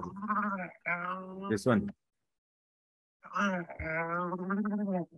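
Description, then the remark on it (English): A person imitates an angry animal grunt with their voice: two long, strained, throaty bellows, loud, separated by a pause of over a second. “It's like a really exactly angry like grunt. It's a muffled elephant.”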